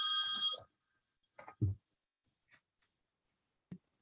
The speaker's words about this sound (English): No, actually, I just had a phone ring.